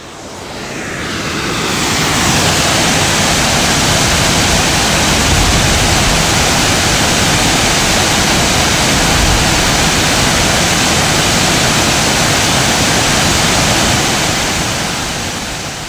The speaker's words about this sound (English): We reach another set of waterfalls not much further up the trail. Up ahead after the set of falls, we can see the waterfall at the head of the river. And so this was one of the most incredibly beautiful waterfalls I think we have ever seen.